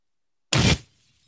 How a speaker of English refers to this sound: That was the wrong one. Mine dropped the bomb. That sounded like a fart. Was that meant to be glass smashing?